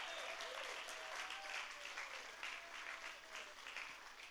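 A room full of people clapping steadily, a dense, sustained wash of applause that holds at an even level throughout, with faint voices and whoops mixed into the background.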